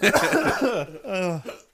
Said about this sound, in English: I got the hiccups from that.